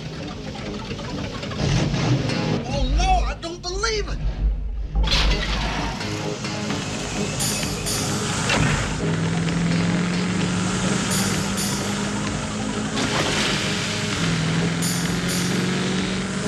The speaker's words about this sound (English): The man's got maybe 30 square feet of lawn, right? He's on a lawn tractor. I believe you. Lawn tractor. Come back to bed. I can't sleep. The noise. I mean, listen to that thing. It sounds like a 20-ton jackhammer.